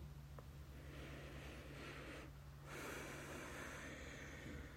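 A long, deep inhale through the nose, an airy hiss that builds and swells over several seconds, fairly quiet above a low steady hum, with no talking.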